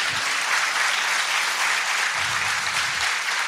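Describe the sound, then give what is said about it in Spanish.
A large crowd claps steadily and loudly for the Lord, a dense, continuous wash of applause lasting the full few seconds, with faint low murmurs of voices underneath. “Déselo grande al Señor esas palmas.”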